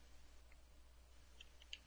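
Faint, sparse keyboard typing: a few soft, quick key clicks scattered over a quiet background, clustering toward the end, with no voices.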